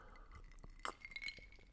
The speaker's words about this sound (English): So I've just poured myself a little scotch and coke. You can hear all these different ice cubes in there going left.